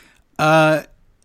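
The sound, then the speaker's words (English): A dog gives a single short snore, a brief droning, tonal breath lasting under half a second, clear against a quiet background. “The dog snoring.”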